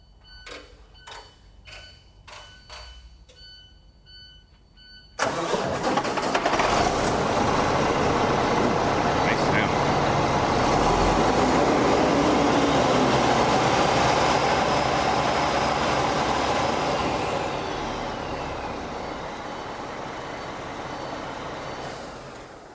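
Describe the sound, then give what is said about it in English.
A few seconds of rapid clicking cranking as a diesel truck with its exhaust taken off is started, giving way to the engine revved at wide-open throttle, loud, holding steady for a long stretch before easing slightly near the end. “Once we get this exhaust off, we're going to crank up the truck and we're going to rev the engine up wide open throttle for 3 to 5 seconds.”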